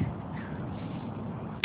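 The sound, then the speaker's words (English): A steady low rumble of cars going by outside, continuous and fairly even in level, ending in a brief sharp knock. No one speaks. “There's the cars out here.”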